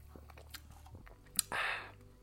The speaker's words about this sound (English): Pardon me while I take a sip of this beverage here.